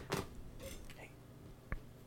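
A wooden chair creaks and groans as Red, a pet, climbs onto its back, with a sharp crack at the start and another near the end, plus a few softer squeaks between.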